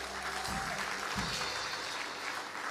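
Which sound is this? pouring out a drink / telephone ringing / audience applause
audience applause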